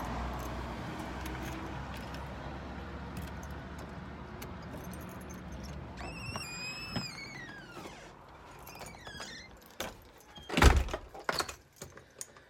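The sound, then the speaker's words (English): Keys jingle in bright metallic clinks as someone unlocks the front door of their craft brewery business, followed by a sharp clack like a lock turning, all over a low rumble of passing traffic outdoors. “And most importantly, the keys to my business.”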